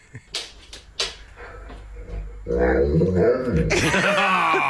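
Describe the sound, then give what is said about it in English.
A few short sniffs or clicks, then a dog makes drawn-out, wavering vocal sounds that mimic human speech, as if asking its owner where she is going, fairly loud, climbing higher in pitch toward the end. “Who could forget the dog on TikTok who asked his owner where she was going?”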